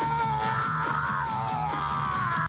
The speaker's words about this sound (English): But I will say this, that would make a pretty darn good ringtone, wouldn't it? Praise God. What do you think, kids? Y'all want a Alex Jones screaming ringtone?